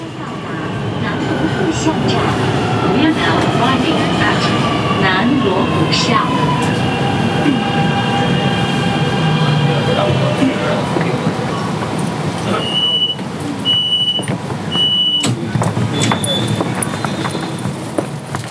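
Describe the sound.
A subway train pulls into a station in Beijing with a loud, steady rumble and a descending electric whine as it brakes, followed by a run of high-pitched beeping chimes, with muffled voices in the background.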